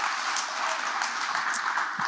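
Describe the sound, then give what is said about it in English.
A church audience applauding to welcome guests, a dense, steady wash of many hands clapping at once with no distinct individual claps, sustained evenly at moderate loudness throughout. “We'd love to give you a great clap.”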